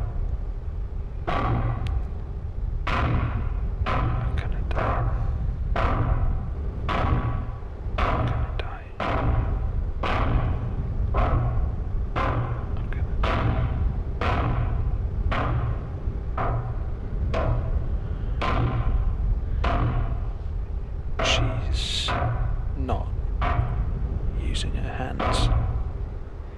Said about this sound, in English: She's using her head. She's beating down the door with her head.